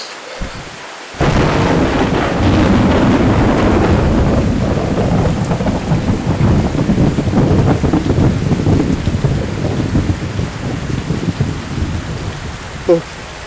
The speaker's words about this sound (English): I think I'm gonna wait this one out in the car. And just until the rain clears up.